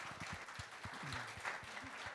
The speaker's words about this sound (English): It's an absolutely smashing digital agency doing amazing work, and they are your panel. Please give them a warm welcome and round of applause.